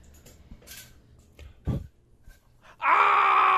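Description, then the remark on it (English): A cat lets out a sudden loud, sustained yowl with a wavering high pitch, following a few quieter scuffling noises and a brief low thump. “Oh shit! Fucking cat!”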